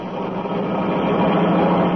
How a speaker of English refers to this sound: Turning onto the road, the tree pressed down on the accelerator. Sedan sped along the concrete after Brinkley's car.